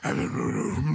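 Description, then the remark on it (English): A man produces a deep, buzzing, sustained drone from the throat for about a second, a steady guttural hum that imitates Mongolian throat singing. “Mongolian throat singer.”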